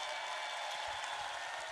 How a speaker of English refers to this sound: A round of applause for the poem. And a round of applause for all the poets in the second round.